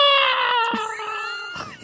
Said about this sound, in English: That's the sound that people make when they get beheaded.